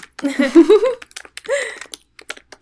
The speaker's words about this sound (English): Who's frantically typing? It was me, sorry. Writing that AU.